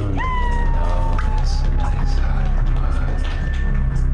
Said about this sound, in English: All right, you guys, your next comedian. Funny guy, laugh and clap your hands hysterically for